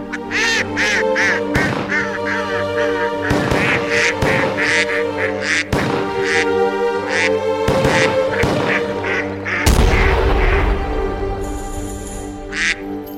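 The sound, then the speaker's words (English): Mallard duck quacks arranged into a bouncy tune, a duck version of a holiday classical favorite by Peter Tchaikovsky: loud, rhythmic honking bursts riding over a steady orchestral backing, with a brief noisy swell near the end. “And the holiday classical favorite from Peter Tchaikovsky, Mallard Dance.”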